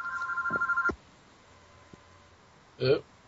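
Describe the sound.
A telephone rings with a rapid, trilling electronic burst lasting about a second, then cuts off into near silence before a brief voice sound near the end.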